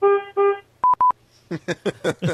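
Two loud, steady car horn honks of equal length and mid pitch, followed by a few short electronic beeps and then a series of choppy voice-like bursts.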